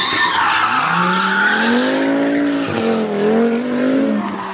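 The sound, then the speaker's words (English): Car tires squeal in a long, loud skid lasting several seconds as the clutch of a 6-speed is popped, a high wavering screech over the deep roar of a revving engine, with no talking. “I'm grabbing a hold to my 6-speed, and I'm popping the clutch because I'm on the WrestleMania Drive-By.”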